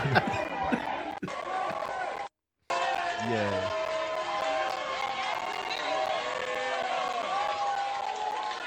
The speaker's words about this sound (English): Everybody clapping. This must be after the knockout. Yeah, nah, it's definitely after the knockout.